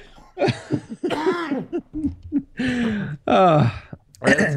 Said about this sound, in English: I have a cough.